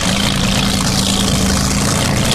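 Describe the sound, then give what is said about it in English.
A loud, steady engine roars continuously, a dense droning rumble with a low hum underneath and no breaks or voices. It is a Boeing-built flat-bottom sea sled boat powered by an airplane engine, speeding across the waters of Seattle. “These boats speed across the Seattle waters with deafening noise.”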